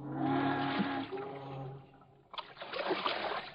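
Two men push a canoe into a river and start paddling upstream; paddles splash steadily, with broad, rushing water noise following a short tonal, musical-sounding opening.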